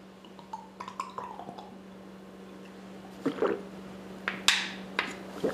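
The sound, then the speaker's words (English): Quiet sipping from a glass of water: soft slurps and small wet gulps come in a few brief bursts, with faint glassy clinks and a low steady hum underneath. “Took a sip of water, but I have to be honest.”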